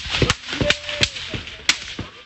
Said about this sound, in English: The video taken before the killing does not show signs of a firefight. You can hear a person saying, "There's the Israeli army." Then, there are gunshots.